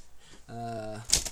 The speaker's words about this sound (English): dear listeners, this week, instead of having... any musical instrument. There's been a bit of a mix-up, and instead we have a typewriter.